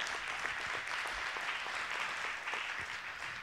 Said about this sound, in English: Come on, y'all give the Lord a hand clap. Come on.